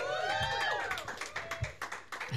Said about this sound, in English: Some people are clapping twice, but that's fine.